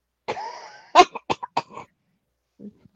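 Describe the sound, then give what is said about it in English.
A rough cough opens into a rapid series of sharp, hacking bursts, then a faint throat-clearing rumble after a short pause. “You didn't even lick it yet and you're already coughing?”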